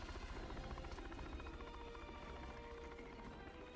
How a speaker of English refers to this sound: Yeah, I guess there are police helicopters here. Oh, no, the cop did call yeah, in. Yeah, no, they're definitely the helicopters backup, there, right?